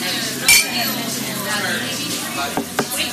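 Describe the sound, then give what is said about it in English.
Glasses clink together in a toast: one bright, ringing chime near the start, then two softer taps a couple of seconds later, with a low murmur of voices and room noise underneath. “And remember, kids, no matter what you think about the current state of politics here in D.C., whether you think the glass is half empty or half full, there's plenty of room to fill your drink. Cheers.”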